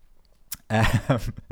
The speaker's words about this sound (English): That was a weird gulp then. I didn't mean to gulp.